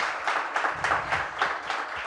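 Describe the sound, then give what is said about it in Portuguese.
An audience applauds, a dense wash of many hands clapping at steady, moderate loudness, with faint rhythmic surges running through the sound for a couple of seconds and no talking over it. “pedir para vocês, palmas para ele, brigadíssimo.”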